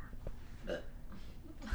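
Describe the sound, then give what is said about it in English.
A single short, guttural burp, a brief throaty rumble standing alone against a quiet background. “You can still hear that. You burped earlier.”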